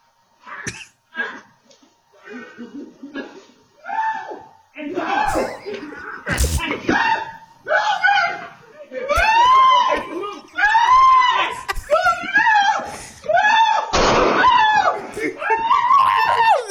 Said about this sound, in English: Hey. Play that scream one more time. Just for one of my people.